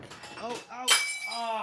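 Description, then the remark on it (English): A wine glass shatters in one sudden crash, bright shards ringing and tinkling for a moment afterward, while voices talk and exclaim before and after the break. “I just shattered a wine glass.”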